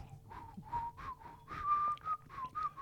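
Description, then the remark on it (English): A person whistles a short, wavering tune, the notes gliding up and down between breathy gaps, moderately loud, with no talking over it. “Anyway, that probably didn't do my whistling justice.”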